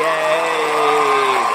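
A loud, steady burst of recorded crowd cheering played as a sound effect from a sound system, with sustained voices whooping over a dense wash of noise, holding at constant volume throughout without any break.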